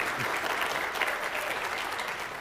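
An audience applauds warmly, steady dense clapping from many hands filling the whole moment without pause, with no voices standing out above it.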